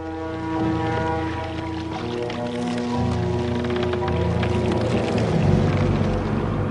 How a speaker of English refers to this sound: Usually you're hearing kind of boat wooden creaks. In this case, it comes off more like you're hearing the creaks of Chiron's bones.